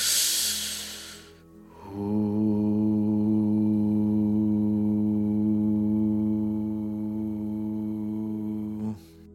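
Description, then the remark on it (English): A breathy intake of air through the nose, then a single steady, low hum held for about seven seconds on a long exhale during a relaxing breathing exercise, even, ending with a faint breath. “So I just sit on my couch, I close my eyes, and I spend the next 10 to 15, maybe 20 minutes breathing in through my nose and extending my exhales and humming on the way out.”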